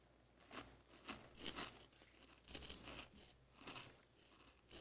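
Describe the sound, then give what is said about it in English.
Crunchy chewing of chips during a taste test, with about half a dozen crisp, crackling bursts in a steady, unhurried rhythm and no talking. “This has got to be great audio. Bunch of chewing.”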